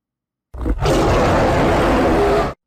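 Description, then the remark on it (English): A loud, sustained animal roar during a battle aboard a ship, harsh and growling, preceded by a brief grunt, intense with no speech. “The lush, peaceful Pemelite ship, a nightmare scene of screams and roars, blood and rage.”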